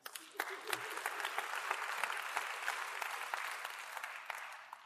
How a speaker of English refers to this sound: That's good news this morning. It's a great place to clap.